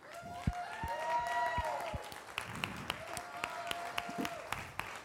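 An audience applauds steadily for about five seconds, a dense patter of many hands clapping with sharp individual claps standing out, while voices call out and whoop over the clapping.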